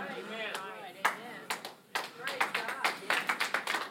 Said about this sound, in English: That's a good time to clap.